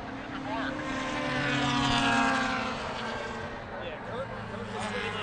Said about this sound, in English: So Dr. Chaos just came by. Motor did not sound happy. Car was not going fast. He might be done.